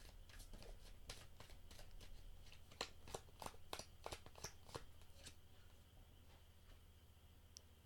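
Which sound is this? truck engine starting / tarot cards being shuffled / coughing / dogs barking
tarot cards being shuffled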